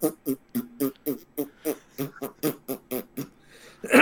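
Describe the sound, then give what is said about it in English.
A voice imitates the farting sound a car makes when its turn signal is turned on, as a steady, rapid series of about fourteen short, buzzy bursts, repeated in an even rhythm like a ticking turn signal, with a louder burst at the end. “And when you turn on the turn signal, it'll make a farting sound.”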